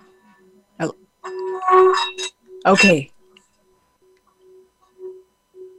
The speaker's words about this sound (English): I brought my Tibetan bowl to kind of demonstrate. Yeah. And sound, you know, so we have with this, we have vibrational and sound energy. So you just... Can you hear that?